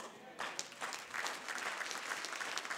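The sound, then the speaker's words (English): An audience breaks into applause after a brief quieter moment, many hands clapping in a dense, steady patter that stays fairly loud until the end. “This time, I don't want you to clap.”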